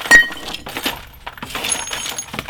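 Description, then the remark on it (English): Glass breaks with a sharp, loud crash at the start, followed by scattered clinks and tinkling shards settling for a couple of seconds, with no voices. “Holy fuck, man. That's a chunk of glass.”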